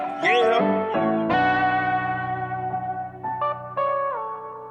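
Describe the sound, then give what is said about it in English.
A voice drenched in heavy delay and reverb effects, its tones smearing and stacking into long sustained trails that overlap one another, loud and continuous throughout. “I don't know if it was a dubs or if it was just that much delay plus reverb”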